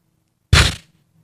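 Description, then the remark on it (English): A voice imitates a firework launch with one sudden, loud, crackling burst of hissy noise that fades within a fraction of a second, followed by near silence. “I need this kind of launch. Let's see if I can do it in my mouth.”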